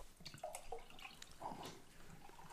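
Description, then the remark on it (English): Liquid being poured, a quiet, steady splashing trickle with a few bubbly glugs and drip-like plinks over a couple of seconds, with no voices. “So I'm just going to give you some pouring music.”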